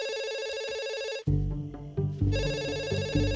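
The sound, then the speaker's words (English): A telephone rings loudly with a shrill, buzzing bell, breaks off briefly as deep booming music thuds in, then resumes ringing over the low, pulsing score. “the story of Scream begins with a terrifying phone call”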